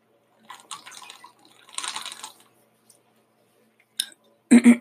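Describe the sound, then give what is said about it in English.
Drinking water: a few wet sips and swallows with soft liquid noises, ending in two loud gulps, no talking. “I gotta drink my water.”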